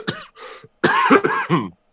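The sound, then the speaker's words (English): A loud fit of coughing from a person with COVID: two short hacks, a brief pause, then three rougher, throatier coughs in quick succession, with no talking. “This whole time, I've been holding back a cough.”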